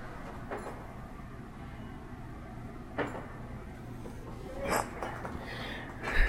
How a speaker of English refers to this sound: Hang on a second. Let me open my door.